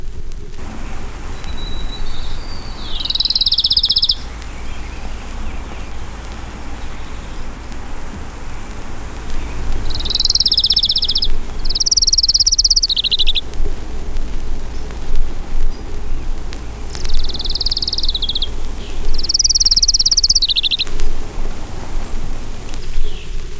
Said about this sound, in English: Townsend's warbler.